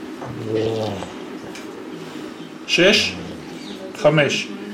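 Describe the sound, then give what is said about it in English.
A bird gives a few short, low-pitched grunts spaced a second or two apart. Two of them stand out louder against a steady, murmuring background. “would occasionally let out these low-pitched grunts, indicating to the teens that they'd made a mistake.”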